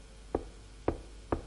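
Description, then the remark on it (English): Three dull, solid knocks of a golden hammer on the head of a pope thought to have died, evenly spaced about half a second apart, fairly soft against a quiet background with no voices. “It's someone's job who's in the church, in the system, if they think the Pope has died, to take the hammer and knock on his head three times and say his first name.”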